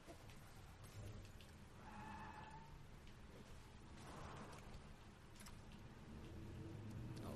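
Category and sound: vehicle, car passing outside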